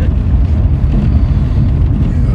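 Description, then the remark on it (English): Steady, heavy rain pours without a break, a dense wash of noise with a deep rumbling low end and a softer hiss on top, loud and unchanging throughout. “So you can probably hear the rain.”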